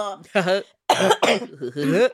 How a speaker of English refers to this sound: Now that I coughed. You know Closet Confessions has given me asthma.